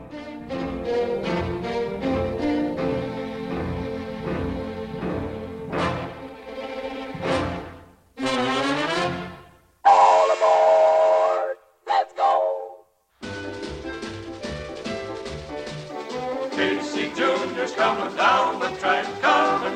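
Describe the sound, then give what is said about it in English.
A bouncy, upbeat orchestral song about a circus train, with a chugging rhythm, broken by brief pauses and short sustained train-whistle blasts, then the lively music returns at full volume. “So much fun and such a great image of loading up the train to go for the circus.”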